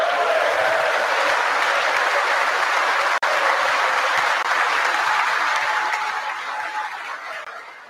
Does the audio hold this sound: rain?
no